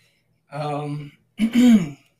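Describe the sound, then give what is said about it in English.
A person clears their throat twice, a drawn-out voiced rumble followed after a short pause by a second, slightly stronger one, with no talking. “Gotta clear my throat for this one.”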